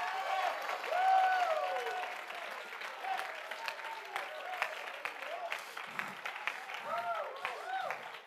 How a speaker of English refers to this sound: Clap your hands before you sit down.